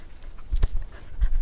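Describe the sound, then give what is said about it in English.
A wolf pants in quick, breathy huffs, with a couple of stronger gusts standing out among steady rasping breaths. No one speaks. “I don't speak wolf. Is that wolf...”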